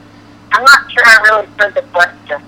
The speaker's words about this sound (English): I'm not sure I really heard the question. Your phone kept breaking up,